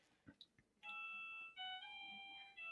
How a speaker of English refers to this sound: Oh, that's pizza. Pizza here. Pizza man. Pizza man rang the doorbell like I asked him to.